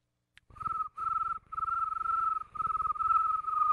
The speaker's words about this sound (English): Yeah, those are the crickets chirping.